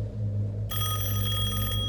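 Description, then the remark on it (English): A house telephone rings once, a steady bright trill lasting about a second over a constant low hum, before it is picked up. The ring then cuts off, and no one speaks. “He said the phone barely rang once before someone picked up.”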